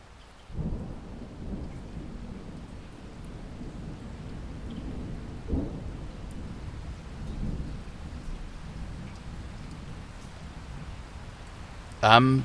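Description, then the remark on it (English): Steady rain pours down continuously, with low rolls of thunder rumbling underneath and a sharper burst near the end. “And with that, Musashi slid the Tanto dagger into his belt, took a wooden practice sword from the rack on the wall, and walked out into the rain and into legend.”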